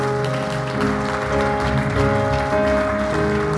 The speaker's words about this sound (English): Would you clap your hands and praise Him for His goodness?